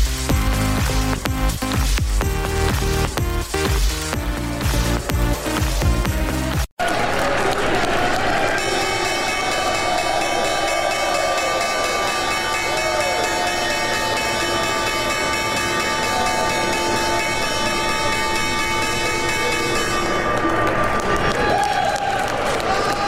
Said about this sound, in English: You are looking at the opening bell back in New York, the final opening bell of the week.